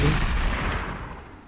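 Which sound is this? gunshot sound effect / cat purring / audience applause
gunshot sound effect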